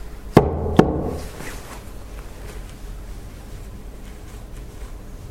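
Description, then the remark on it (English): Two sharp, loud knocks on a wooden table in quick succession, made as a signal for an unseen presence to copy with a noise, followed by a few seconds of quiet background hiss with no talking. “If I'm banging on the table, could you copy and make a noise?”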